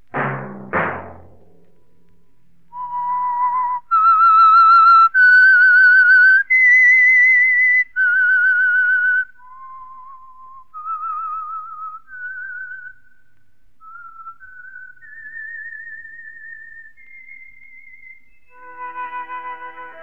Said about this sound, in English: Whistle be your signal for the Signal Oil program, The Whistler, each Wednesday night at this same time, brought to you by the Signal Oil Company, marketers of Signal gasoline and motor oil, and fine quality automotive accessories.